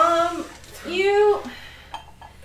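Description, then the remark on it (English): A voice makes a couple of drawn-out vocal sounds, then dice thrown for a perception check clatter briefly with a few small, sharp clicks on a hard surface near the end. “I'm gonna throw out these dice.”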